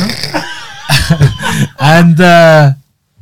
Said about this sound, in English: Have a persistent cough, by the way.